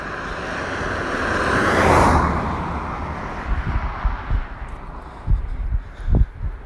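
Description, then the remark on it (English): A car roars past at speed, its engine noise swelling to a loud peak and then fading away, followed by scattered low thumps and rumbles in the background. “I think the last car that went, that just went past me, either ran into the side of the road, or he had a bit of oil in his exhaust or something.”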